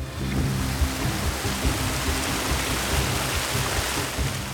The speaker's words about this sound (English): Kuna watched the river rise, slowly at first, then faster, urged on by the rain.